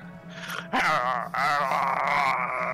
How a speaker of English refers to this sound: You roughly get your hand like barely off your side, and you see his ears like point up, and you can hear a loud growl emanate.